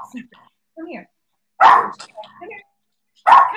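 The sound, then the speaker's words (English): A dog named Fido barks loudly, two sharp barks spaced a couple of seconds apart, with quieter murmuring sounds in between. “You're barking at the cat, maybe.”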